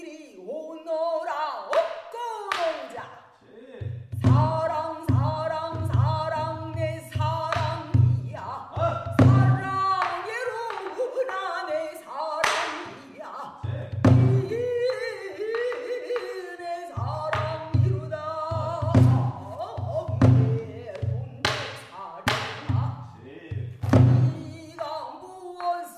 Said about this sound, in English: So this is like storytelling, long form storytelling in a sort of song style that has at least one singer and a percussionist. And I'll play a little clip of what pansori singing sounds like because you have to hear it.